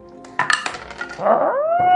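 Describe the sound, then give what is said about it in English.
A short clatter of dice tumbling across a table, a few quick knocks in half a second, followed by a rising, meow-like tonal cry that holds steady to the end. “Or I want to make you roll just because you're saying it in such a shitty way.”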